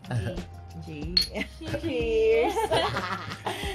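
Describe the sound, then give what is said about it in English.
Glasses clink together in a toast over shots, a bright ringing tap, mixed with soft chuckles and people talking around it. “Pero bago mag-shift sa ibang ano, shot muna. Shot muna. Okay, sige. Okay, cheers.”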